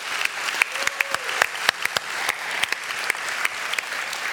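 A church audience applauds a speaker steadily, the clapping dense and continuous with sharper individual claps cutting through the wash for several seconds, with no voices heard.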